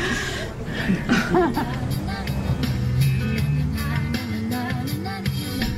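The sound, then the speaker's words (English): Soft, dreamy pop music plays steadily inside a car, slightly muffled, while people chatter and chuckle over it throughout. “I do like that car music.”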